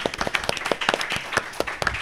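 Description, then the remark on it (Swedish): A burst of audience applause: many hands clapping at once in a dense, uneven patter of sharp claps, steady and moderately loud, with no voices standing out. “Så vi ger en applåd för”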